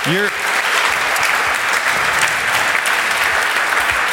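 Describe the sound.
A crowd claps steadily and loudly for about four seconds, a dense, even wash of hand claps. A short voiced shout or whoop rises at the very start.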